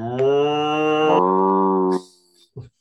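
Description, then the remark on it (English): A person does a long, drawn-out imitation of a cow's moo, loud, shifting pitch partway through before a short breathy sound at the end. “I need a better moo out of you.”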